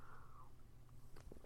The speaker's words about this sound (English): Excuse me while I sip my tea.